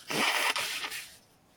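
A loud, forceful nose blow: a long, hissing, honking burst followed by two shorter blasts, then trailing off into quiet. No one speaks.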